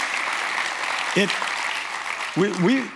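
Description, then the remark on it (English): Steady applause for the Lord from a church audience fills the whole stretch, a dense wash of clapping, with a couple of voices calling or cheering over it near the middle and toward the end. “Yeah, give the Lord a clap off for it.”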